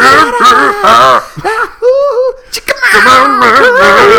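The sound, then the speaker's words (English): Two voices take turns loudly wailing and screaming back and forth in a sing-song way, mimicking a song, with sliding, wavering pitches, with brief pauses and a hint of laughter between calls. “Is like there's this part where they're just like screaming back and forth.”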